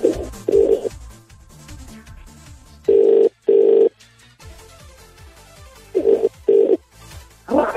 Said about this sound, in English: Right, we're ringing the competition winner right now. If it comes up with a withheld number, please answer your phone. Ring, ring. Ring, ring. It's ringing.